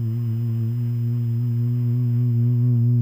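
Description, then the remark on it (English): A person hums one long, steady, low buzzing tone for about three seconds, mimicking a honeybee. The drone stays even, rising slightly in loudness toward the end, with no talking. “But there are plenty of honeybees who would be waking up from the cool of the wintertime, looking around for a flower to pollinate, going hum.”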